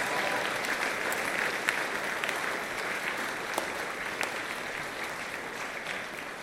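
Steady applause from a sizable audience giving themselves a round of applause, dense clapping sustained at an even level for several seconds with scattered sharper claps standing out, no voices heard.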